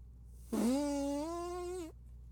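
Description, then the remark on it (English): A single buzzy, wet fart-like raspberry made by blowing on an arm, lasting over a second with a steady droning pitch that rises slightly, fairly loud, with no talking. “Ooh, you can even do one of those where you blow on your arm like this.”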